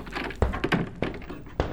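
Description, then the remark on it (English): Several dull knocks on a wooden door, four or five irregularly spaced thuds over a soft background murmur, moderately loud. “The door, Hives.”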